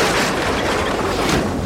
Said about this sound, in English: Give me some lightning. Just the way God does it. Thunder and lightning crash around Truman.